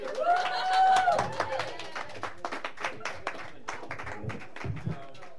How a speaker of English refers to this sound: There's applause.